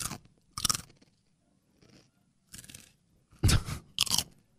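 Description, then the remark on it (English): Loud crunching of chips, with several sharp bursts of bites and chewing spaced irregularly across a few seconds, the crunches loudest toward the end. “What are you doing? Too loud, man.”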